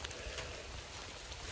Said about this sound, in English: As you can hear, it's still raining.